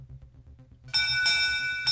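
A ship's bell in a sealed room 200 feet underground rings out loudly after a low rumbling lull. It is struck a few times in quick succession, so its bright metallic tone keeps ringing and swelling.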